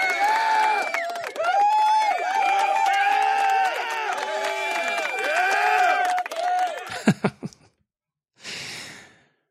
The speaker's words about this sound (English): So I'm going to give another round of applause to Tyson Barrie. We'll miss you, pal.